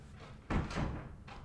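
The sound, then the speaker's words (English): A door opens with a sudden thud and a short rattling sweep of movement as someone walks into a recording room, followed by quieter room noise as it settles. “Somebody just opened that was, my door.”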